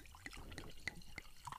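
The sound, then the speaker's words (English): Wine from a twist-off bottle is poured into a glass, a soft liquid trickle broken by small bright plinks and drips, quiet, with no voices. “So let's get a pour going.”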